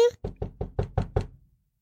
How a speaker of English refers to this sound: What was that? Did somebody knock? Listen, don't open the door.